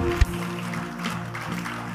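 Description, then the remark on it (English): An audience claps their hands as a clap offering to the Lord, a dense, steady wash of applause lasting a couple of seconds, with sustained low musical tones humming underneath and a single sharp thump at the start. “If you believe it, give the Lord a clap offering, someone.”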